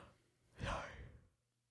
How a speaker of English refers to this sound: No, my yawn was unexpected, oh, okay. Sorry.